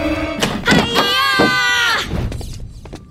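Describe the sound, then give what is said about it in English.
The door of Room 412 creaks open with a drawn-out, wavering squeal of the hinges lasting over a second, surrounded by a few soft clunks and thumps, fairly loud. “I'll open the door, have your stakes ready, and stay low.”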